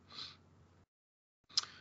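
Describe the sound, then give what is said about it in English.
A throat being cleared in two harsh, breathy bursts split by a brief silence, the second ending in a sharper rasp. No speech. “As the discussion unfolds, oh, hang on, I'm going to clear my throat here.”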